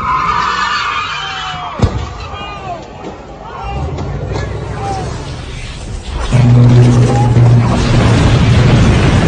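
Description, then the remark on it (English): A car skids with squealing tires over a rumbling engine in a video clip being played, a sharp bang cutting in early, while indistinct voices murmur in the background and a heavy low drone swells near the end. “When I think of the world ending, I think of that video of the car.”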